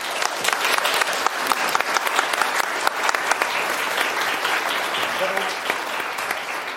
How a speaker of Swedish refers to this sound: Fantastiskt, en applåd till, tack.